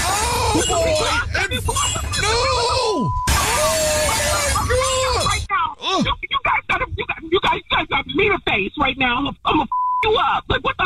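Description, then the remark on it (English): A loud crash of window glass shattering fills the first few seconds in two bursts, heard over a phone call during a Jubal Show phone prank, followed by excited voices talking over a thin, phone-like line, with a brief beep. “Excuse me, I just heard a crash, and you just said you were sliding it through the window.”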